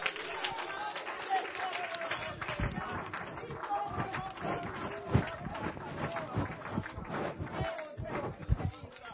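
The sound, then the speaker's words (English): A church audience claps steadily in an uneven, dense patter while voices shout and call out praise to the Lord Jesus over it, the sound loud and continuous for the whole stretch. “Will somebody lift their voice and clap their hands and let Jesus know that he is the King of Kings and the Lord of Lords in your life?”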